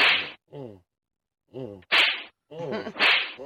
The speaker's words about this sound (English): Now, those caps are all those ass whoopings. Those are face slaps. Oh, those are face slaps. It's still slapping.